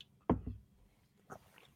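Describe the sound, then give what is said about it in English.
Someone takes a sip of a drink: a quick pair of wet slurping, gulping sounds, a short pause, then one softer mouth sound, with no talking. “I'll take a sip with you on that one.”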